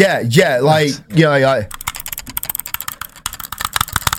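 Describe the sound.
A voice sounds briefly, then a rapid, irregular flurry of sharp computer mouse-button clicks on a Mac follows, fairly loud, continuing steadily to the end.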